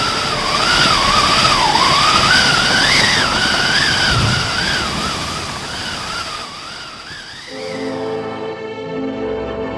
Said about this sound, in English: Oh, mon Dieu, a storm! A storm, nothing! It's a maelstrom!